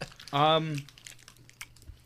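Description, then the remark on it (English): A brief hummed vocal sound, then soft, irregular clicky chewing noises very close to the microphone as someone munches on a chocolate candy likened to Pop Rocks. “I love the chewing sound into I the love microphone.”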